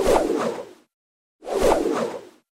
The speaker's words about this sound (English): That is the sound of a roundhouse kick in a kung fu movie. Ah, okay. It sounded like a kung fu special effect, but I couldn't be sure of it.